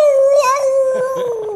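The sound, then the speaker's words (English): A human voice imitates a cat in heat with one loud, drawn-out yowl that wavers and slowly slides down in pitch for about a second and a half, with no other talking. “It's kind of like when your cat was in heat, you know, and they go down to the basement.”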